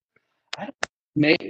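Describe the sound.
Two sharp, crackly clicks from a glitchy audio connection on a call between speakers in Massachusetts pop out a fraction of a second apart, surrounded by brief, garbled fragments of a voice.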